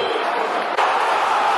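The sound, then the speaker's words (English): A large football crowd at a Wigan match roars in a dense, steady wash of noise as the game turns nastier, loud throughout with a brief dip just past the midpoint before the din picks straight back up. “The game has just suddenly taken a nastier edge, and the crowd are now in the game.”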